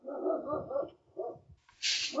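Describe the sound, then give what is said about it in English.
A dog barks in a quick series of loud yaps, with a short pause before a final burst, accompanied by a brief hissing noise near the end. “Where's that dog coming from?”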